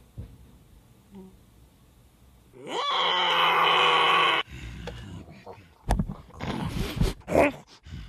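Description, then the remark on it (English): A T-Rex roar bursts out loud and rasping, holding for nearly two seconds after a quiet start, then gives way to shorter rough grunts and rumbling noises. “T-Rex is here.”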